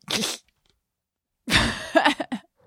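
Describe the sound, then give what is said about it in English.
A raspy mouth noise, accidentally made by a person, that comes out like a duck's quack: a short burst, a second of silence, then a longer nasal honk that breaks into a few choppy bits. “I made a duck sound.”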